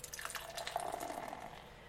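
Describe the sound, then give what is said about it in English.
Chernibach dark beer, handmade in Midvale, Utah, pouring steadily into a glass, a continuous gurgling splash with a faint ringing tone as the glass fills, lasting about two seconds with no talking. “And the pour.”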